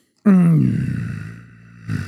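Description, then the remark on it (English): A person lets out a single low, rough growl that starts loud, sags slightly in pitch and trails off over about a second and a half, with a brief raspy swell at the end. “No, that was my big picture growl.”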